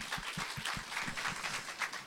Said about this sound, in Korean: Awesome. 우리 박수 한번 쳐주시죠.